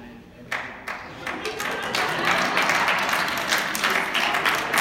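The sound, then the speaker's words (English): An audience of men breaks into applause, starting with a few scattered claps and quickly swelling into steady, dense clapping from many hands. “I'm not glad the men are applauding.”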